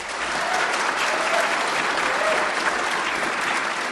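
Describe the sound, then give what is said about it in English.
A crowd applauds steadily for about four seconds to vote that the item about the Dutch purchasing for beads is the fiction, a dense, even wash of many hands clapping at once with no break or swell, loud and constant throughout. “If you think the item about the Dutch purchasing for beads is the fiction, then applaud.”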